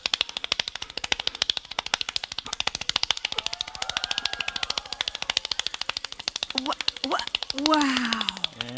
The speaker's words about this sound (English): 1 minute, 1 minute, he got 802 claps.